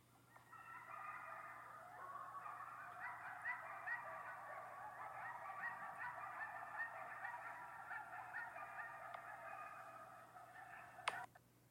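A pack of coyotes right by a house, heard from its porch, howls together, a dense, steady chorus of overlapping high-pitched yips and wavering cries that runs for about ten seconds before a sharp click and a quick fade.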